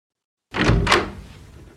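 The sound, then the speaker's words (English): A doctor's office door with a picture of a foot on it opens and shuts in one quick movement, two knocks of wood and latch followed by a short fading rattle, with no voices. “That's a funny kind of dentist with a picture of a foot on the door. Well, I'm going to go in.”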